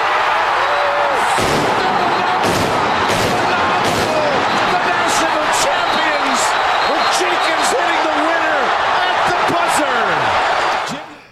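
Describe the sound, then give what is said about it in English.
Sharp gunshot-like cracks burst out again and again at irregular intervals, loud, layered over an excited announcer's basketball call of Villanova beating UNC for the 2016 title and a dense, roaring crowd-like wash. “Forgot about the gunshots.”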